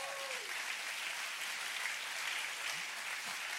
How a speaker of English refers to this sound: The big hand clap goes there.